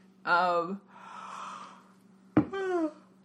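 A person yawns up close: a voiced, moaning start, a long breathy exhale, then a second groaning sound that falls in pitch, with a low steady hum underneath.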